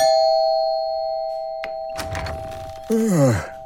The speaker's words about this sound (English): I went up to apartment 27 and rang the bell.